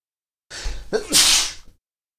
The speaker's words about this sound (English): So you all just heard me sneeze.